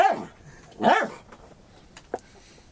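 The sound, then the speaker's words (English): A dog barks twice, with two loud arching barks about a second apart, followed by a short sharp yip and then quiet. “collects... Barks.”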